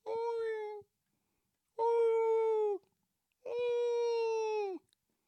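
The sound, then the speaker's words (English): A person imitates whale calls with three drawn-out, tonal moans separated by short pauses, each held steady and then dipping in pitch at the end. The voice is fairly loud. “I just told them don't believe the hype. That's what I just told them, by the way. Because I know not everybody speaks whale.”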